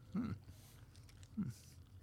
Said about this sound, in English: I'll probably cut our chewing out. It's actually a chewing ASMR show now. Mm. Well, you know, to be honest, at first glance, it looks like bacon in here, but it tastes, it definitely has a very sweet taste to it.